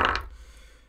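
A short clatter of dice tumbling onto a hard tabletop, a quick burst of rattling clicks that fades into a faint ringing tail within a second, with no voices.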